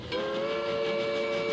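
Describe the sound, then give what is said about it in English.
A San Antonio Ramses Pass train's whistle blows in one long, steady, loud blast, its layered tones holding unbroken over a low rumble, with no voices. “And he would bring his employees out, Bernie, so they'd hop on the San Antonio Ramses Pass train.”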